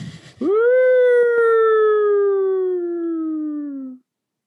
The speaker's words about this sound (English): I need to get some sirens going.